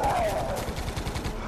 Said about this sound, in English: Run towards the gunfire, that's the spirit. Oh, sorry, now, full-scale battle.